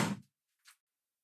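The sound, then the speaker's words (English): A door opens with a brief, soft thump as someone arrives at the door, followed moments later by a faint, short click or creak. Quiet, with no voices. “We got someone at the door.”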